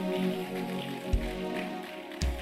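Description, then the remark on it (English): A church audience claps for the Lord during a sermon in a dense, steady patter that continues throughout, with a couple of brief low thumps standing out partway through. “Can somebody give the Lord a mighty clap?”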